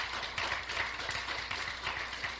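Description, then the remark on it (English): An audience claps their hands in praise: a dense, steady wash of applause with no speech over it. “Come on and give him a hand clap of praise.”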